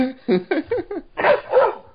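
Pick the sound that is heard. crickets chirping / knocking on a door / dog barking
dog barking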